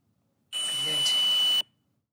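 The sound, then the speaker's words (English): A single sustained high-pitched electronic beep from paranormal investigation equipment in a private house, lasting about a second over a wash of static hiss, with a faint muffled voice beneath it. “It's probably some kind of paranormal equipment that's making a beeping sound, but there's also a voice.”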